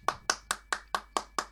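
Brief applause made of seven crisp, evenly spaced hand claps at a quick steady rhythm, fairly loud, with no voices.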